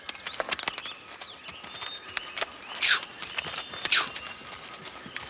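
Horse hooves clip-clop in an uneven walking rhythm as a Mongolian professor rides a horse on a mountain after a fall, with two sharper, louder knocks standing out among softer steps and a light background hiss.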